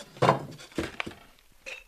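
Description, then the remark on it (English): Handmade ceramic dishes clink and knock together in a few quick bursts, with a brighter ring of pottery touching near the end and quiet moments between. “she's trimming pots, surrounded by buckets of glaze and shelves of handmade dishes ready for the kiln.”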